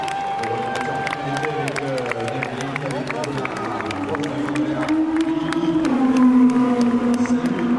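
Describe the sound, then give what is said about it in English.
One of the Colin Collis Audi race cars drones with a steady harmonic whine that swells and shifts in pitch as it goes by, set against a busy murmur and chatter from a flag-waving crowd. “There goes one of the Colin Collis Audis.”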